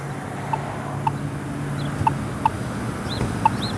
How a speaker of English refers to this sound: So I got the activation sign that says you can walk now, so it's beeping rapidly, so now you can cross the street. And now it's slowed down and we now have a red light.